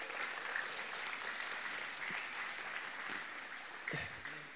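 A crowd claps steadily for several seconds for two volunteers called up to stand at the front, a dense, continuous wash of applause from many hands, consistent in loudness throughout.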